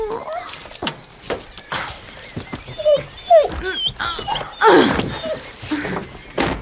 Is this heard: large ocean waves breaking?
no